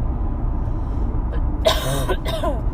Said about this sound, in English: You'll have to mind my coughing. Like I said, I was sick last week.